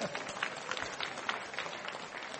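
An audience at a debate breaks into steady applause, many hands clapping at once in a dense, even patter that holds at a moderate level for a couple of seconds.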